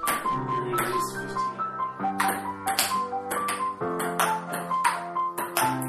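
A ping pong ball clicks back and forth in a steady rally between two players, crisp taps arriving roughly every half second over a sustained tonal background, with no talking.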